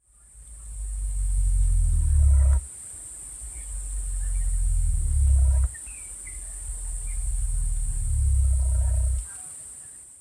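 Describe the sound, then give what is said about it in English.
A cassowary's deep, very loud rumbling call, around 23 hertz and one of the lowest frequency sounds made by birds: three long booming rumbles that swell and cut off abruptly, with a steady high insect-like hiss running underneath throughout. “So it's possibly related to the sound that they make, which is like a deep, very loud rumbling.”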